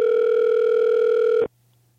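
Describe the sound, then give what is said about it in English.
A steady, loud telephone dial tone, heard while a number is redialed with Control R on a machine, hums at a constant pitch for about a second and a half, then cuts off abruptly, leaving only a faint low hum. “I know I called the right number because all I did was this. Control R, and it says redial on my machine.”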